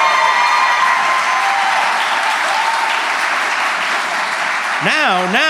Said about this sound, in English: One more round of applause for Phil Rosenthal.